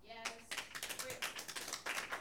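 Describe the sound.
A short voice gives way to a quick burst of applause, several pairs of hands clapping in a dense, slightly uneven patter that runs steadily to the end.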